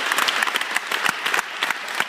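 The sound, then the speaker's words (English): A round of applause from a group for a chapter raising more than $2,500 for breast cancer awareness: dense, steady clapping with sharp claps standing out, filling the whole short stretch at a fairly loud level with no talking. “Have a round of applause for that, huh?”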